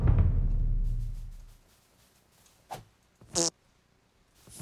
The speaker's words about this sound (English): Did you fart?